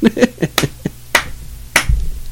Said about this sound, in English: You just applauded yourself. A round of applause.